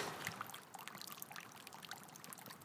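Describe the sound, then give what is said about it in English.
A thin, steady trickle of water in a garden runs continuously, with soft bubbly splashes over a gentle hiss, quiet, with no voices. “I'm just going to get the water.”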